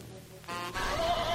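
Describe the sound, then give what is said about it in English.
A horse lets out a single short whinny, a bright, quavering neigh of about a second that rises out of a quiet start, heard alone. “The healing power of horses.”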